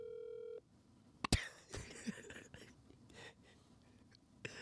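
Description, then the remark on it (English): A short steady electronic phone tone sounds for about half a second as a call is placed from a phone in a basement, then cuts off into sharp handling clicks, rustling and faint breathy noise. “So my phone dials out of here perfectly fine.”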